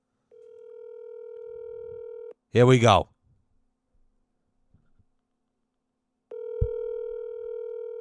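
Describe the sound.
A steady electronic telephone ringback tone of an outgoing call sounds in two long bursts separated by a few seconds of silence, with a brief spoken phrase between them.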